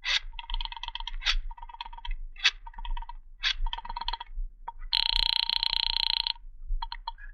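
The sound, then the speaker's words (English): A telephone rings over the line on a call to the Visaya Apartments: a run of short, buzzy electronic bursts, then one loud, sustained ring lasting over a second, trailing into a few faint blips. No one speaks. “You quickly reach for the phone.”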